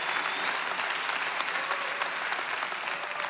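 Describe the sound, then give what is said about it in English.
A church audience claps together in sustained, steady applause, a dense wash of overlapping hand claps filling the space with no voices standing out. “Can we give God a round of applause?”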